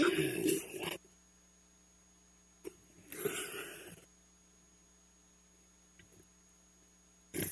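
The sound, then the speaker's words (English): Several harsh coughing and throat-clearing bursts, one near the start and a longer fit midway, with a few brief catches between and another short cough at the very end. “When it comes to not coughing, it's not me.”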